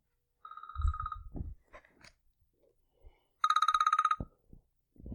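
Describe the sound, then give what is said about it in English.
A telephone rings in two bright, trilling bursts separated by a pause, loud, with some soft thumps and rustling in between and no one speaking. “All right, well, I think we have a caller.”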